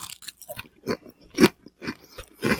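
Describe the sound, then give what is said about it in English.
Crunching of crisp kettle chips bitten into the microphone and chewed, a steady series of about seven loud, crackly bites spaced roughly half a second apart, with no talking. “I'll bite this into the microphone. You can hear. There was some really good crunch within these kettle chips.”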